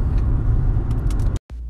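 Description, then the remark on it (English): Steady low rumble of a car interior, engine and road noise droning continuously, with a few faint ticks, then a brief dropout before the rumble resumes. “Okay, anyway, we're in the car now”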